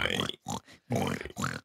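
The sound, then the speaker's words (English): A person imitates a sleepy pig's oink with four low, nasal grunts in quick succession, fairly loud, separated by brief pauses. “sounds like a sleepy pig.”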